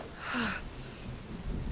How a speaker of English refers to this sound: How long has it been storming and raining and... I tend to lose track of time sometimes. It's been quite some time though.